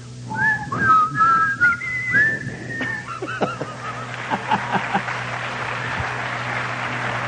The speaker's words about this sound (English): I've always wanted to whistle that tune, whatever it was.